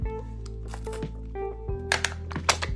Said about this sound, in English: Let me take a sip of my water because I'm getting thirsty.